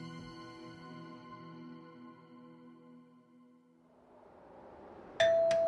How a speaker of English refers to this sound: The doorbell rang, and out in the cold snow and wind stood Christian.